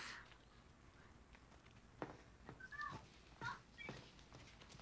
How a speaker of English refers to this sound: Oh, I hear There's my cat.